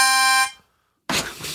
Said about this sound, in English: Do we have a Christmas bell? Here, no, a Christmas harmonica.